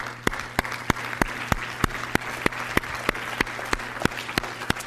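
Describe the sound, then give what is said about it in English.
Slow, evenly spaced applause from one person during a church sermon, clapping at a steady rhythm, about sixteen sharp claps in five seconds over a low constant hum, with no one speaking. “I got applause from one about being thankful that Jesus visits the house of Pharisees.”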